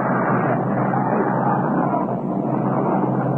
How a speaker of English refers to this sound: They've got a jet up overhead here. He's really going through a lot of tricks and antics.